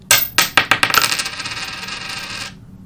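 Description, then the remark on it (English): A coin drops into a money bank, striking with a bright metallic clink and bouncing several times in quickening succession before settling into a fading, ringing rattle. Clear, no voices. “What's that? That's a coin. They got it in the money bank.”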